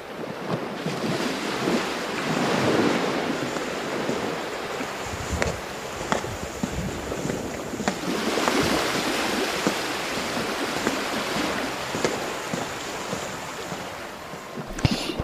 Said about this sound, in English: It was a miracle. God parted the sea and let Moses and his people pass.